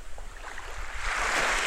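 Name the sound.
ocean waves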